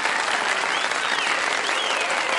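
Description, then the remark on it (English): A dense, steady roar of applause from a large crowd, with faint cheers and whistles rising through the clapping, continuous and fairly loud throughout. “Okay, the crowd's so excited.”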